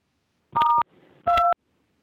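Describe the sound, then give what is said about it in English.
Two short electronic tones of the kind a conference call plays when someone joins and leaves, each a steady two-pitch beep lasting under half a second, separated by a faint crackly pause. “There must have been an entrance tone and an exit tone.”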